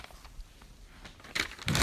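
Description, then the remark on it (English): A page being flipped: two quick papery rustles, the second louder and fuller, following a quiet stretch of faint background noise. No one speaks. “Flipping the page, yep.”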